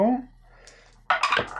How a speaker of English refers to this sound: That's a 6 on the dice. +3 from danger is a 9.